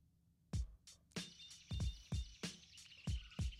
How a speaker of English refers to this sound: Crickets. Yeah, that is not a technical difficulty.